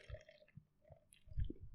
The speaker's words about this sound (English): I just want to have a sip of my little peach tea. Go on, sip it's into the microphone. It's peachy enough.